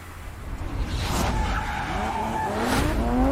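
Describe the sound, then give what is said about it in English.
A loud race car engine revs and whines with rising and falling pitch while tires squeal and skid in a couple of sharp bursts, continuous for a few seconds. “I don't know what happened in the last year that all of a sudden all these fucking people want to use like race car aesthetic.”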